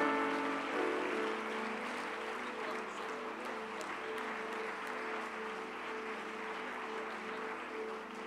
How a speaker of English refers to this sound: We want to receive them in the name of the Lord. Could we give them a great big hand clap?